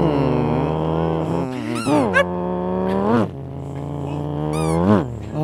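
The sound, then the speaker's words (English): A voice imitates a race car driver's dog with a sustained, whiny howl that swoops up and down in pitch like an engine revving, loud, with sharp yelping rises near the middle and end. “That's a race car driver's dog barking.”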